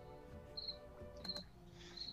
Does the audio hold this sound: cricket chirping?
yes